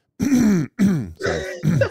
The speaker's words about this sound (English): Let me clear my throat real quick for this.